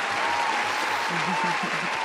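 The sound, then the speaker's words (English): Steady, dense applause fills the whole stretch, a broad wash of many clapping hands at an even loudness, with a voice speaking faintly underneath. “You know I got a round of applause right here for you, man.”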